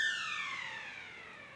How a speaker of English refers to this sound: And this sound you will hear throughout this conversation because it's the school bell that goes off and on and off and on.